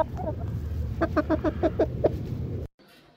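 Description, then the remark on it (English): A chicken clucks in a quick run of about seven short, bright calls over a low background rumble, and the sound cuts off abruptly into near silence. “Now that's something to cluck about.”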